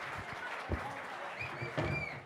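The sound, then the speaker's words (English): A crowd claps steadily and densely for a couple of seconds, with a few louder bursts and what sound like faint whistles or cheers rising through the noise, welcoming a guest who has been called up to take a seat. “Round of applause for Blake Johnston.”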